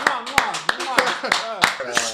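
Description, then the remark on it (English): Seven or so sharp, loud hand claps land in a steady, even rhythm, about three per second, while people talk and react over them, welcoming NBA 2K League president Brandon Donahue as a guest. “Clap it up.”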